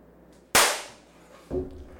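A single loud, sharp hand clap, made to sync up audio and video for a recording, rings out and fades over about half a second, followed a second later by a softer, lower knock; no one speaks.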